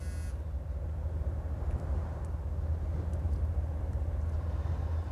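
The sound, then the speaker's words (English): Steady low rumble of a car interior as a father drives his daughter to the mall, with a short electronic tone at the start and a few faint, scattered beeps from a game she plays on her phone over the engine and road drone. No talking. “So her dad is driving her to the mall and she's on her phone playing a game on her phone.”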